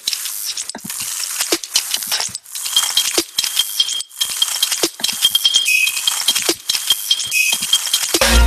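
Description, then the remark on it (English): Wet, splashy percussive hits made from water samples processed with a transient preservation technique strike in a steady rhythm over a constant hissing, spray-like wash, each crisp transient landing loud. “I just put the transient preservation technique on them and made like, it sounds like a hit, but it's like this wet, weird, yeah, percussive thing.”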